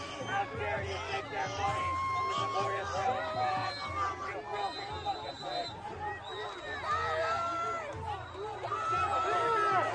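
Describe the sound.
A large protest crowd at the White House, holding Palestinian flags and pushing on the gates, yells "break it down" and shouts over one another in a dense, continuous roar of overlapping voices, with raised cries rising out of the babble and staying loud throughout.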